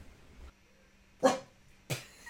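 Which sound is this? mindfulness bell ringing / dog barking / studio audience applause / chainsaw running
dog barking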